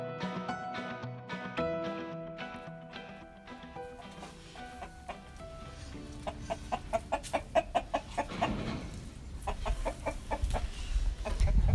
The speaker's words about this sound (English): So that's one of our roosters. We have two pretty nice roosters here on the farm, along with about 12 hens.